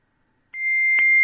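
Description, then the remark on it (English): After a moment of silence, a loud, piercing phone tone from a misdialed number with an extra 8 cuts in abruptly and holds steady at one high pitch, unbroken, with no voices. “Oh, my ears are dying! No! You put an extra 8 in there,”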